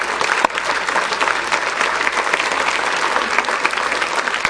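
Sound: audience applause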